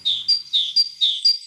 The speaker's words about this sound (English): Let's listen to a forest bird.